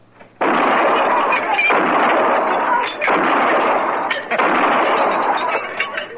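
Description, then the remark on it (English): Four loud gunshots fired in a bar at glasses lined up, at a steady pace of about one every second and a quarter, each followed by a harsh, crackling wash of noise that fills the gap until the next shot. “Pick off some of them glasses all lined up so nice and pretty.”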